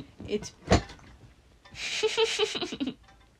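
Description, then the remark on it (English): A water bottle is knocked over by an apple, giving one sharp, loud clunk early on, followed by soft rustling and people talking over a hissy, bright clatter. “Your apple knocked over my water bottle.”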